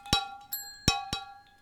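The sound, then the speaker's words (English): Margarita glasses clink together in a toast four times in quick, uneven succession, each bright tap leaving a clear ringing tone that lingers; moderately loud, with no talking. “Okay, well, I got my marg. Do you got your marg? I got my marg. I'm ready to go. Yes, cheers.”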